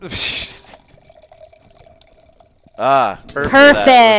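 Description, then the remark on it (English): Liquid pours into a glass with a short splashy rush, then thins to a faint, steady trickle before voices break in near the end. “Wait, let's capture the pour.”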